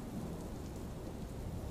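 Steady rain pours down under a deep, continuous rumble of thunder, the low roll and the hiss of falling water blending into one dense wash of sound with no voices.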